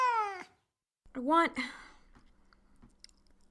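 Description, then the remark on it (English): A cat meows twice, a short cry and then a longer rising-falling meow after a brief pause, followed by quiet chewing or rustling noises. “That's a nice cat.”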